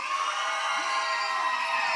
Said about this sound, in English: So on three, cheer, applaud, go crazy. One, two, three.